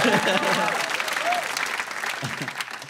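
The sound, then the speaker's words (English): An audience claps in a dense, steady patter of many hands, fairly loud, with faint cheering and voices mixed in as the applause gradually eases off. “If you wait long enough, you will clap.”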